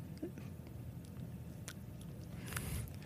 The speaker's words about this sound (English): I've become so disheartened with the world that I have to be on 2 pills a day to deal with it. So this is me taking it.